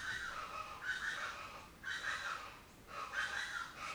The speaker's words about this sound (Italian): Ecco, questa si chiama ciacialaca e ve la presento.